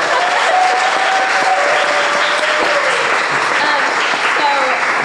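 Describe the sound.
A crowd claps steadily in sustained applause, a dense wash of handclaps lasting the whole stretch, with some faint voices and whoops mixed in.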